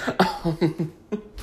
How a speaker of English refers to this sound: Would not be a show without me coughing.